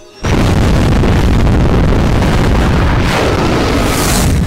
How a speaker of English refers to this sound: To get into space, you need a craft with a different type of engine. A rocket engine like Thunderbird 3. ExoMars will launch using such a rocket. A Russian proton rocket, in fact.